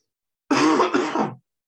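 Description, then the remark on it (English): A single rough cough with a throaty, rasping edge, lasting under a second and heard on its own with no talking around it. “Let's see if I'm good enough at editing the podcast to get rid of that cough.”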